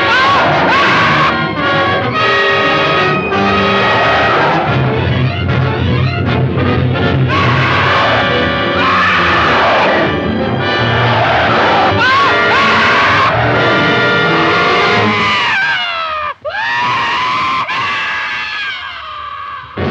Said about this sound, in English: The creature then chases the guys into the jungle and finally catches one of them, who climbs up a tree, only to rip him to shreds with his teeth before tossing him away like a rag doll. It's another great scream here.